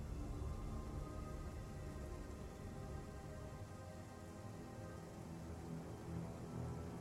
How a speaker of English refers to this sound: Rain starts to pick up.